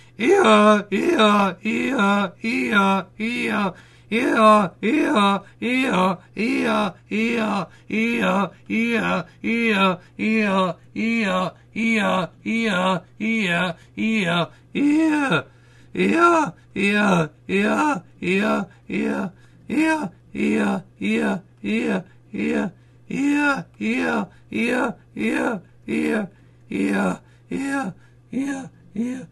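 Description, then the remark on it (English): A voice imitates an old donkey's bray, calling out "Eeyore" again and again in a steady, rapid rhythm of dozens of short, loud, pitch-swooping cries with brief pauses between them, growing slightly more ragged toward the end. “Making an old donkey say Eeyore until the breath leaves his body.”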